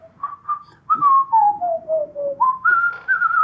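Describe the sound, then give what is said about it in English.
Someone whistles the Gilligan's Island TV theme tune, a clear run of notes that steps downward and then jumps back up, with only a faint low hum behind it. “In the end, was … whistling Gilligan's Island?”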